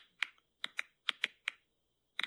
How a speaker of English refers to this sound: You hear that? Yeah, is it like tapping? It's like clicking or like popping popcorn, they compared it to.